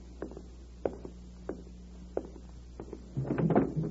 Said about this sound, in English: Let me answer it by opening the door.